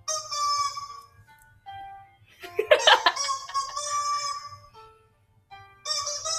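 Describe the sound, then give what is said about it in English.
A rubber chicken toy squeaks out a run of shrill, wheezy squawks, some drawn out, with short pauses between them and a louder, raspier burst in the middle, fairly loud. “No, we're not doing the rubber chicken sounds”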